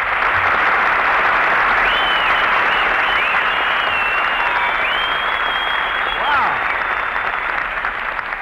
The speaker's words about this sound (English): Well, listen to that, Mary. You got, you got more applause than I did. Well, why not? I'm the only girl on the program.